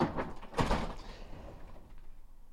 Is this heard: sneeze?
no